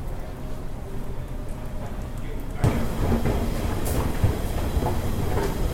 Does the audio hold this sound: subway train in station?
yes